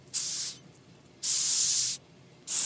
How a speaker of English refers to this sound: How about a Madagascar hissing cockroach? Every year, the Bronx Zoo offers their Name a Roach event.